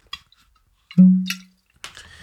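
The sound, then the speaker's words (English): A bottle of Uncle Nearest 56 whiskey is cracked open: a faint click, then a low, hollow tone that swells and fades over half a second, followed by a sharp burst and a soft rasping sound. “I'm gonna crack open this 56.”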